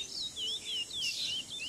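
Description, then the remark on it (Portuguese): A songbird sings a continuous, warbling run of high whistled notes that rise and fall in quick succession, fairly soft and heard alone against a quiet background. “Era apaixonado por pássaros, especialmente aqueles que cantam.”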